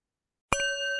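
A single bell is struck to conclude 30 seconds of silence for the animals; after half a second of silence its clear metallic tone rings on with steady overtones and slowly fades. No voices are present.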